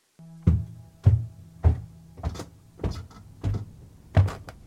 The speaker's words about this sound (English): Those are marching footsteps. Yeah, those are marching footsteps. The squeak is so good.